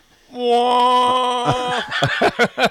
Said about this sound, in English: It's a country. I think any country should get a foghorn.